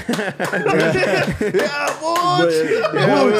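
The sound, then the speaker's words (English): Loud, sharp hand claps from a father ring out in an irregular series of strong smacks, mixed with voices talking and laughing throughout. “Hey, did your dad just start clapping loud as fuck?”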